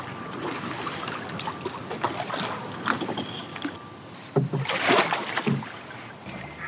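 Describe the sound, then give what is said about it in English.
Canoe paddle strokes dip and swish through water, with splashy bursts and gentle trickling between them, over a light rush of wind against the microphone, as the canoe is paddled past a pottery boat by a towpath. “We just paddled past you and noticed that you're doing pottery classes on the towpath today.”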